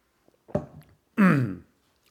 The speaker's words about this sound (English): Hold on, I'm going to take a drink of water. Oh, I'm sorry, coffee.